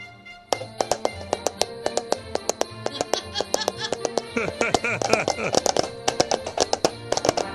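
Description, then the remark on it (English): Rapid, rhythmic clip-clop tapping of paper cups imitating horse hooves, sharp hollow knocks repeating in a steady galloping pattern, with voices murmuring underneath. “You too can do this with your own paper cups.”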